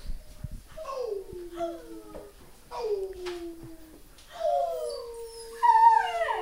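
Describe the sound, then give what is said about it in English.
A small dog in a little pink sweater, growling at a tour manager, lets out a series of whiny, drawn-out howls, each sliding downward in pitch and growing slightly louder toward the end. “He's growling at our tour manager”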